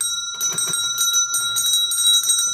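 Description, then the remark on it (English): A cluster of small household bells, the bells to all the rooms of a house, jangles all at once in a continuous, clamorous ringing, overlapping tones sustained throughout with no voices present. “That's all the bells to all the rooms, but that's not possible.”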